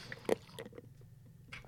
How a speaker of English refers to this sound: Got to take a second here, get a sip of water.